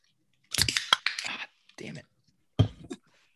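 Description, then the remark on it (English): Fumbling metallic clicks and scrapes as someone struggles with a seltzer can's tab during a taste test, coming in several short, uneven bursts with pauses between, and no clean pop of it opening. “You can tell we haven't done a taste test in a while, but just having a little trouble opening it up.”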